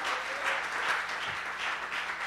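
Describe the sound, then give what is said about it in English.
A crowd claps steadily together, giving a clap to God during a morning gathering, a dense, sustained wash of applause at even loudness with no pauses and no voices standing out. “Can we give a clap to God?”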